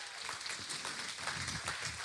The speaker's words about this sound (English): Come on, let's clap for these extreme sheep.